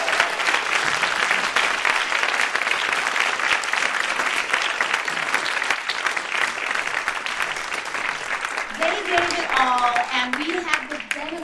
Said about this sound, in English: So I thank you, I thank you for delivering and giving us all of it on the stage today. And so please give me a round of applause for these incredible leaders.